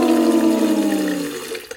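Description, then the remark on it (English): Water rushes from a tap in a steady stream, its tone sinking and thinning as the flow weakens and nearly stops within two seconds. No voices. “This water supply has stopped here.”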